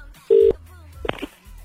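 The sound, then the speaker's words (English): A short, loud burst of a steady telephone ringing tone heard over a call line, followed by faint line noise and a brief muffled rustle. “Still ringing.”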